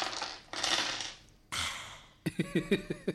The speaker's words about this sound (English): Dropping dice. Energy levels up, I hope. Dropping hot dice. Yeah, let's get a combat going. Hot dice. Let's roll dice.